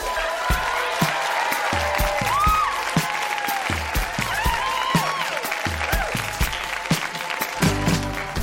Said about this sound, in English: Toronto, that has been Grown-Ups Read Things They Wrote As Kids. Huge round of applause for everybody who read tonight. So good.